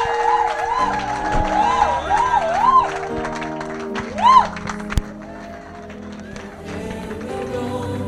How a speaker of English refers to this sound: So ladies and gentlemen, with a standing ovation and a clap unto Jesus, let us receive the ministry